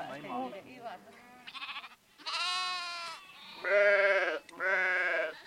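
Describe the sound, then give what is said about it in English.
Several sheep bleat one after another, loud, their wavering, quavering calls overlapping in a short chorus with only brief gaps between them. “who says sheep have always provided for her family.”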